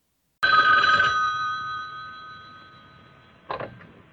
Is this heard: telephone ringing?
yes